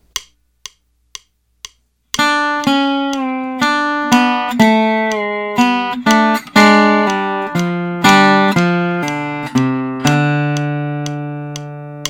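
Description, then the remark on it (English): Four evenly spaced metronome clicks count in, then a slow guitar lick rings out, notes connected by hammer-ons, pull-offs and slides, with some two-note double stops, played clearly with no talking. “Example 2 is a lick that incorporates some of these sounds, as well as using hammer-ons, pull-offs, and slides, and some cool double stops.”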